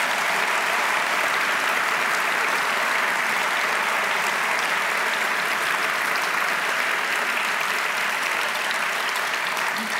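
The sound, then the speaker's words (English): An audience applauds steadily for the full ten seconds, a dense, even wash of many hands clapping at a constant loud level with no voices standing out, at the Sydney Writers' Festival during a session with author Geraldine Brooks about her book The Secret Chord, recorded for ABC RN. “And some applause would go very nicely there.”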